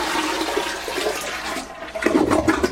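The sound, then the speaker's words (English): During a power outage in Florida, a toilet that has stopped flushing is flushed by dumping in water scooped from a filled bathtub: a loud rushing gush that swirls and gurgles, then turns into bubbling, sputtering drainage near the end. No one speaks. “If your toilet has stopped flushing, You can dump it in.”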